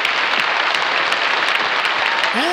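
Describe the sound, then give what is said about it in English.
Steady, dense applause from a crowd, a loud wash of many hands clapping at an even level throughout, with a brief rising tone near the end. “And we'll give all of our social media friends the applause.”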